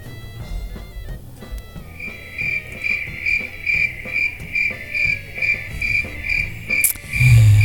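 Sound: crickets chirping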